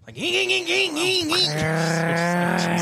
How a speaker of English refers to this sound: Dude, some of those cars would drive by like trying to be cool, but they just sound like a lawnmower or like one of those weed whacker engines.